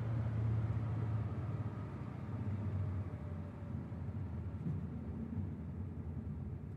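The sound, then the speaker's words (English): An old car engine rumbles steadily as the car pulls up around the corner near a car showroom and stops, a low droning hum with a slight rattle that holds at a fairly even level throughout, with no voices. “Pull up around the corner. I don't want anyone to see me get out of this heap of junk.”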